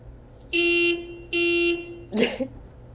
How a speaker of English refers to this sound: I've been watching this lady, the one whose car alarm has gone off just now. She pulled up to somebody's house.